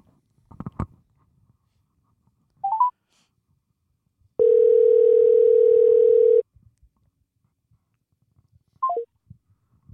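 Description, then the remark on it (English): A steady electronic phone tone drones for about two seconds, flanked by short rising and falling beeps like a call connecting and ending, with faint clicks and no talking. “Oh, she hung up?”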